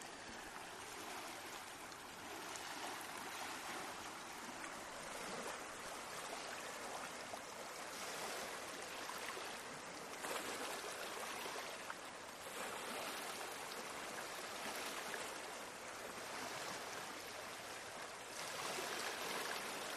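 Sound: lake water lapping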